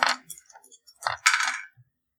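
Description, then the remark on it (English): Dice rolled during a tabletop game clatter and tumble across a hard tabletop, a few quick rattling bursts followed by a longer skittering roll that settles into silence. Fairly loud, with no talking. “So roll your dice, and you want to beat an 8.”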